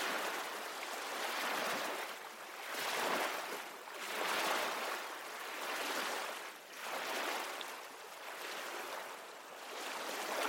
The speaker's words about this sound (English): Let yourself be cradled by the sounds of the ocean, its rhythmic waves a lullaby for your soul.